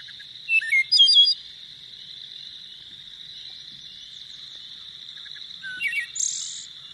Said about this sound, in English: That's my favorite songbird. That's the most beautiful bird song I think there is. All right. And there we go. There we go. Right. That's a wood thrush right there.